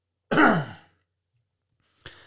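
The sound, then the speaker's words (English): A single loud, raspy throat clearing with a rough, falling voiced rasp, followed by silence and the start of another short, gritty burst at the very end, from a speaker whose throat is bothered by cold, rainy weather in North Dakota. “I have to clear my throat again.”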